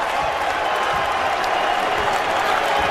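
A large crowd of New York Knicks basketball fans celebrates during a home game against Charlotte, cheering and roaring continuously in a dense, loud wash of voices and clapping that holds steady for the whole stretch.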